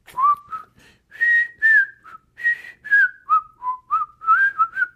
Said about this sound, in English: Yeah, just whistle. I just whistle themes like video game theme songs.